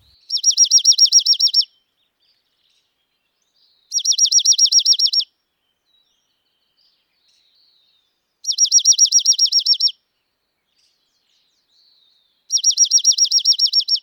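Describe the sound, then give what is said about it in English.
A junco sings four loud, even trills, each a rapid string of identical high notes lasting over a second, separated by a few seconds of silence. The bird sounds clear, with no voices. “Though both sexes sometimes sing a quiet series of trills, warbles, and whistles, the males broadcast a loud, even trill in the spring that is hard to miss.”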